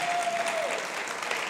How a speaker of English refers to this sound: And it's good to hear you clapping. That's awesome.